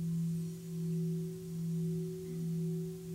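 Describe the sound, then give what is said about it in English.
A Tibetan singing bowl rings with a steady, low humming tone that swells and fades in slow, regular pulses, a warm sustained drone with no voices over it. “Tibetan Singing Bowls”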